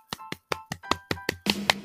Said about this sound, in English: But for the ones that are that have self-control, congratulations to us. Let's clap our hands.